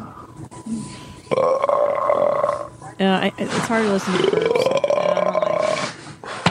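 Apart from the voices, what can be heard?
loud burping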